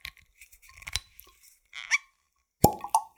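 Light crinkling and fiddling sounds as plastic shrink wrap and a paper strap are taken off a spirits bottle lead up to a single sharp pop as the bottle stopper comes free, followed by a brief hollow ring. No one speaks.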